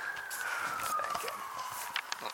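Faint police sirens wail in the distance, a thin tone gliding slowly downward over a soft outdoor background, with no one speaking.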